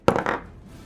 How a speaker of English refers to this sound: So roll a d20. Roll a d20. I can do that. I'm going to use my physical dice for this one. Oh my god, big roll, big money, big money. This is for you, audio listeners.